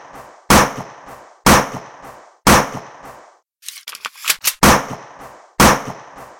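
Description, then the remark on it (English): Five sharp pistol gunshots ring out at roughly one-second intervals, loud, with a brief cluster of smaller clattering cracks between the fourth and fifth shots. “He brandishes his pistol and unloads five shots into the man's gut.”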